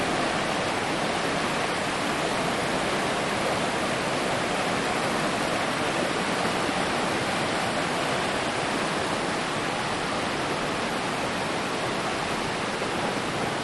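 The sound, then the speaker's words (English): A mountain river rushes steadily, a dense, continuous roar of churning water with no breaks or changes in intensity, heard alone without any voices. “This mountain river that we're listening to, let's see that.”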